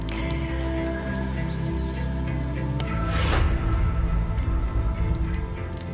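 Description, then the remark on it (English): A steady, roaring rumble of burning flames, fairly loud, with scattered sharp crackles and pops that grow denser partway through. No one speaks. “I can hear the flames.”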